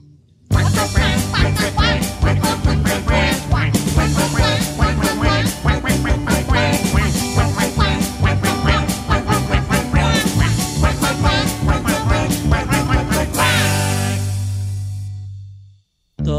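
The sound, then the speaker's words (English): A duck quacks over and over in a fast, steady rhythm, loud, set against a busy musical backing that ends on a held low note and fades out. “But the duck goes.”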